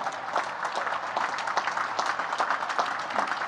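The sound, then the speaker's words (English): Midshipmen of the Class of 2022 stand and applaud their parents and families, a dense, continuous wash of many hands clapping at once with no voices standing out, holding an even, fairly loud level throughout. “So, midshipmen, stand up and clap for them.”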